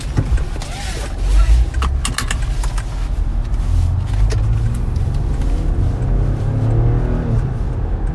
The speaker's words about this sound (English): I'm going to get some loud traffic sounds. Listen to the cars whizzing by.